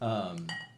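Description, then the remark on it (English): Wine glugs briefly into a glass, a short steady pour with a ringing, shifting tone and a faint clink of glassware, lasting under a second. “But yeah, so I'm not an expert pour like you.”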